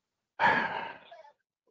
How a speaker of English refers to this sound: we can hear you breathing and fumbling around.